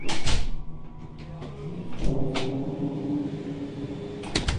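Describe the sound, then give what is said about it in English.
Heavy double doors of an antechamber between two labs, leading into a laser lab, swing open and shut, giving a few sharp thuds and clunks spread over several seconds, set against a steady low mechanical hum. “So between the two labs where we've just come out of and into this laser lab, you've got these double doors.”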